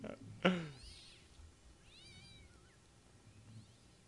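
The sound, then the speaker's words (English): A canned alley cat sound effect: a cat meows sharply near the start, followed by a few thinner, wavering cat cries trailing off over a quiet, slightly noisy background. “Sweet canned alley cat sound effect.”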